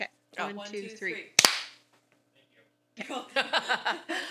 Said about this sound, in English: Do we need a clap? Or are we good? Do we need a clap again?